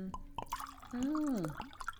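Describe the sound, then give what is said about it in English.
Lukewarm rosé wine from a just-uncorked bottle with a white cork pours into a glass: a few drips and splashes, then a steady gurgling stream whose pitch bends up and back down as the glass fills, lasting about half a second. “Pass me a glass, please.”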